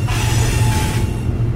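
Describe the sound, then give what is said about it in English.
A freight train of 72 tank cars carrying crude oil rumbles steadily along winding tracks through the Eastern Townships in Quebec, a loud, continuous low chugging with a faint metallic whine riding above it. No voices. “72 tank cars carrying 7.7 million liters of crude oil chugged along the winding tracks through the eastern townships in Quebec.”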